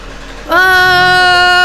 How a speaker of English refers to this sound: Sorry guys, my husband's truck started super loud.